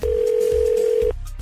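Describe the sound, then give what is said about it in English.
A phone call being placed in the morning: one steady, mid-pitched electronic ring tone holds for about a second and then cuts off, with a faint low rumble underneath and no talking. “So with that in mind, we're calling”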